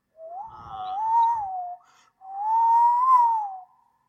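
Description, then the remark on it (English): A tea kettle whistles on the stove in two long, wavering tones separated by a short pause, each swelling and then fading. The sound is fairly loud, with no talking. “I think the tea is ready.”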